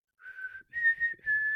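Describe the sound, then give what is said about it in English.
A short whistled tune of four sustained, clear notes, the first held long and the rest following smoothly at a similar pitch, with faint low rumble underneath; a whistle signal from the film Black Widow. “Because I don't remember them having a whistle thing.”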